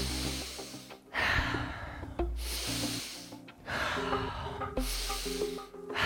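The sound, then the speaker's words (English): Slow, deep breaths in a breathing exercise, drawn into the belly and chest and let go on the exhale in a steady rhythm, about four airy breath sounds in a row over soft, sustained background music. “Belly, chest, inhale, and let it go on exhale.”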